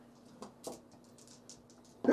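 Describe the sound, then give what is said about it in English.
A single sudden, loud sneeze bursts out at the very end during a tabletop dice game, following a couple of seconds of quiet background with a faint steady hum and small scattered noises. “Bless you.”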